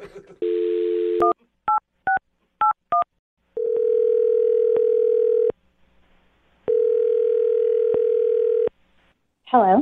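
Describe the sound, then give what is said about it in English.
A phone's dial tone gives way to a quick run of touch-tone beeps as a radio host dials a woman's number, then two long, steady ringback tones sound before a voice briefly starts at the very end. “I'm going to dial the phone number right now, though, and get her on the phone and find out why she's not calling you back, okay?”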